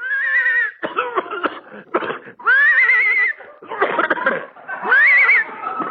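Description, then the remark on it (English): A hoarse horse whinny rises and falls three times, separated by raspy, sputtering, cough-like snorts, as the horse is hooked up to tow a car 10 miles to Palm Springs. The sound is loud, with no other sounds around it. “I think the horse is horse.”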